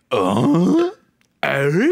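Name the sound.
burp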